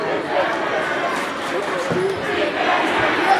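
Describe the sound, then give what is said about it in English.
A loud, dense roar of an indoor crowd at a basketball game between Amherst and Salem, sustained cheering and shouting echoing through a gym, with scattered voices and a few sharp thuds mixed in. “And you gotta love the crowd involved in this one.”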